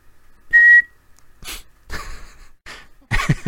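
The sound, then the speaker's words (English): Madame Hooch's referee's whistle gives one short, shrill, steady blast near the start, signalling the players to mount their brooms, followed by several breathy whooshing bursts of air at irregular intervals, the last one louder and rougher. “Mount your brooms, on my whistle.”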